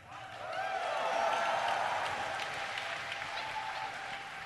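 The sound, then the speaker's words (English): A crowd breaks into steady applause, many hands clapping in a dense, continuous wash that holds at a fairly even level for several seconds without any speech over it. “Don't clap for me.”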